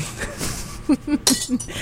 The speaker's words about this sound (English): There's a lot of wine glasses getting destroyed. Yeah, in yeah. This. Just really quaint wine glass breaking.